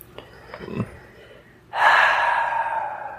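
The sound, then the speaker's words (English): A voice imitates loud snoring: a few soft breathy sniffs, then one long, harsh, rasping inhale that comes in abruptly and holds strongly for over a second, loud. “I wanted to strangle her, but she was already, you know, strangling herself with the snoring. Sounded like so.”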